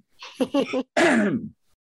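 Someone coughs close to the microphone: three quick, harsh bursts, then a longer, throaty exhale that trails off. The sound is loud and isolated, with no talking.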